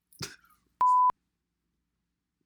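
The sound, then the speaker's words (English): A single loud censor bleep, a steady pure tone lasting about a third of a second, cuts in after a brief clipped fragment of sound and is followed by silence. “I'm gonna bleep that, of course.”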